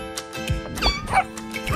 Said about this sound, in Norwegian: kanskje en hund som bjeffer på en katt som svarer med et mjau da